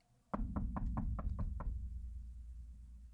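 household object, knocking on a door

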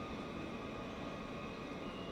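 vehicle, train

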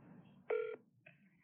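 signal or alarm, telephone call ringing

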